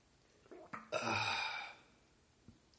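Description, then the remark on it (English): Mouth sounds of someone sipping water: a couple of small wet clicks, a breathy slurp lasting under a second, then a soft gulp near the end. No talking. “Let me just take a quick sip of this water.”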